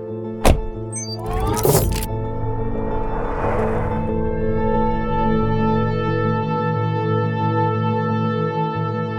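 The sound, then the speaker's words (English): A sharp thunk and a brief mechanical whir, then an automated medical truck's steady engine drone settles in, humming constantly as it drives a couple of blocks to the morgue, with no one talking. “The med truck is automated, and there's no one aboard except me and Tala.”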